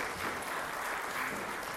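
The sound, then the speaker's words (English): A crowd claps steadily, a dense, even patter of many hands at moderate loudness, with no voices standing out above it, applauding after a scripture reading. “Is it appropriate to give a round of applause for some good scripture reading?”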